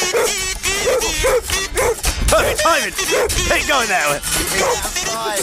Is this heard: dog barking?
yes